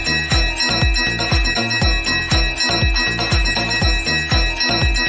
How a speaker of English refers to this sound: Ring the bell. Yeah, baby. Get the bell for that mom joke. Love getting mom joke bells.